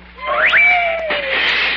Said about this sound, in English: Meow, meow. Put that cat outside and come here.